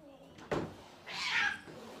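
A cat, while attacking, lets out a sharp, strained yowl, followed by a rising, drawn-out wail, loud, with a brief thump at the start.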